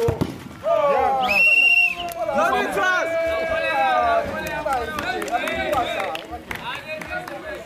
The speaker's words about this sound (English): Around 30 people from the neighborhood came to watch the match. At the goal, they cheer.